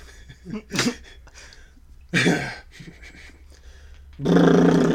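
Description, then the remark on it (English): Someone imitates a fart with their mouth, blowing three buzzy, rasping raspberries: a short one, a longer one, then a final loud, sustained burst, with no talking. “So is that what your fart sounds like? It's my mouth.”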